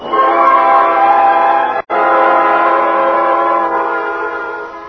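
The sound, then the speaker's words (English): A tea kettle on an electric hot plate whistles loudly and steadily, a shrill sustained tone that cuts out for a split second before resuming and holding to the end, with no one speaking. “I left the tea kettle whistling on the electric plate.”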